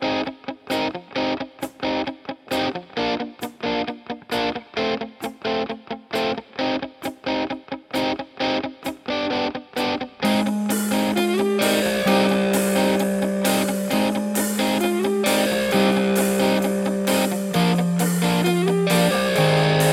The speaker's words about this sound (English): Hey, let's hear a little crunchy guitar, and then we'll get after it.